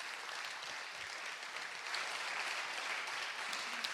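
audience applause

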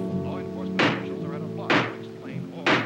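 hammering

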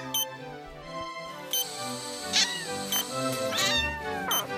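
kitten meowing

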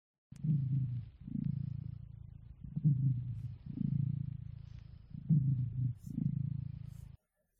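domestic cat purring

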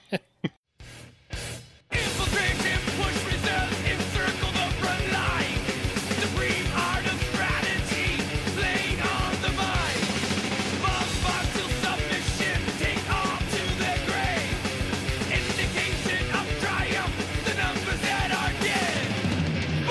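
thrash metal song playing

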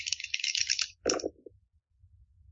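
dice being rolled

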